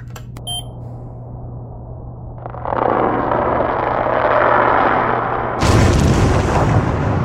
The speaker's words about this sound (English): What's most interesting about this is that high-pitched bubbling sound. I've never heard anything like it. I thought it could be a black smoker or a thermal vent.